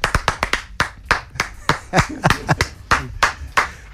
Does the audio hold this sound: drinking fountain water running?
no